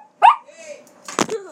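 A dog gives a short, sharp bark, followed about a second later by a second rougher, noisier bark-like burst, with quiet background in between.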